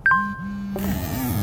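A phone's notification ding: two quick bright electronic tones, clear, ringing out briefly before a muffled, noisy bed of sound takes over.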